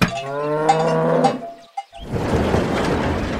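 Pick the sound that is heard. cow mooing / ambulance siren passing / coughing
cow mooing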